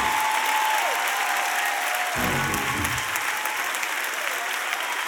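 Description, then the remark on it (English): A church audience applauds steadily throughout and shouts at the preacher's call during a sermon, a dense wash of clapping with shouts rising out of it, and a sustained organ tone sounds faintly beneath the noise. “I'm gonna need you to shout right here on this point, whether you feel it or not, on every location.”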